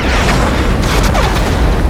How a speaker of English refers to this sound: As I was spot checking my E-11S, trying to figure out what the problem was, I was rocked by a massive explosion.